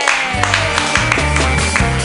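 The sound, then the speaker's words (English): A comedy show audience claps and applauds steadily, a dense wash of many hands, with a bass-heavy musical line thumping underneath throughout. “Clap wildly, everybody.”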